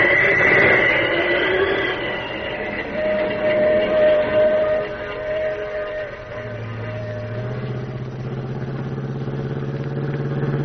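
The Pacific Flyer passenger train rolls steadily along the rails about a mile beyond Carson City, with a loud, continuous rumble and clatter, whistle-like tones sounding over it early on, and a deeper droning hum rising toward the end.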